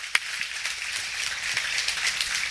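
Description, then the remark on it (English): A crowd applauds steadily for a couple of seconds, a dense, crackling patter of many hands clapping at once, fairly soft and even, with no voices over it, applauding people who served in the military, police or fire service. “Hey, guys, give them a hand of applause.”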